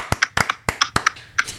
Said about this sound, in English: What are you beating? Yeah. That's his nutsack. He was slapping his belly.